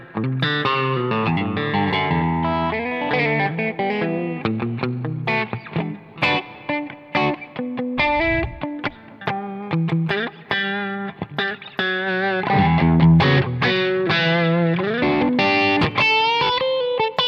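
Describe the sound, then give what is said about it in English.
Distorted electric guitar through a push-pull EL34 tube amp with the gain at 12 o'clock, played as a busy run of riffs and single notes with thick, saturated mid-range crunch, loud and steady throughout with no talking. “Push-pull EL34s? That one, yeah. Gain it. Let's gain it up a little bit. It's a gain at 12 o'clock.”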